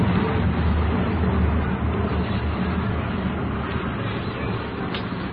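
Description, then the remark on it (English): A dense, steady engine roar from sixteen military planes flying overhead in a very tight formation above a ballpark in Brooklyn, holding at a loud, even level for several seconds and easing off slightly toward the end. “16 military planes in a very tight formation buzzing up ahead here.”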